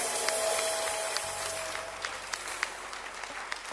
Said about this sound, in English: Hallelujah. Keep clapping your hands unto the Lord.